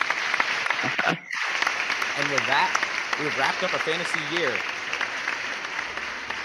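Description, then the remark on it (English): Dense, steady applause from a massive crowd fills the whole stretch, a final round of continuous clapping with a brief dip near the start, while a man speaks over it. “Now let's get one final round of applause from this massive crowd.”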